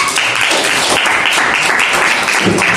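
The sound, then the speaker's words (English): An audience claps steadily, a dense wash of many hands with no clear gaps, fairly loud and even throughout, with no one speaking over it. “I clap for them.”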